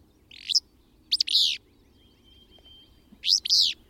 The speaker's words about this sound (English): Willow flycatcher.